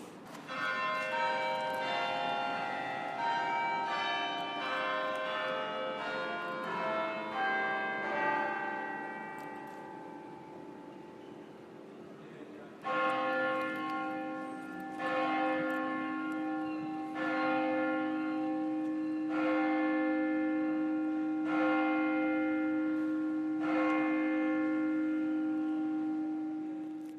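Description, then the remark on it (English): The bells of St. Mary-le-Bow church in the City of London ring out in a rapid tumbling peal, then a single deep bell tolls six slow, evenly spaced strikes for six o'clock, each one resonant and lingering, with no voices. “That's the bells. The bells of St. Mary Le Bow. It's 6 o'clock in the city of London, 2,000 years of history.”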